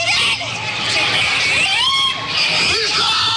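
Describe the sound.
A crowd in panic after an SUV plunged into a parade, with several voices screaming for loved ones and shouting over one another amid a constant chaotic hubbub, loud throughout.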